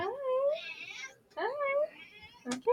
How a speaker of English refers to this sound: Is that your cat? Wait, can you hear her? I'm sorry. I need to let her in for a second.